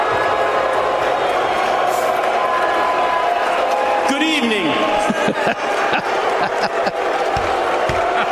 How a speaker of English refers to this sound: They got a couple of cheers.